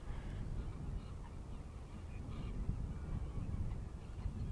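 A few faint, far-off duck quacks come in scattered bursts over a steady low rumble of wind across open water, with no voices nearby.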